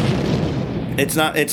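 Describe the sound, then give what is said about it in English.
A loud, rumbling explosion booms, its heavy low roar filling the first second before a voice begins talking over the fading rumble; something massive has hit one of the walls of a city. “People are starting to panic, gather up their things, hide in their houses, and as you're kind of trying to grasp the situation, all of a sudden you hear this loud explosion.”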